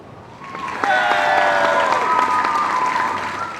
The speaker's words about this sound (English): Tonight, I'm happy to announce that John Wayne Airport will officially be renamed. The crowd is silent for a moment, then erupts into cheers.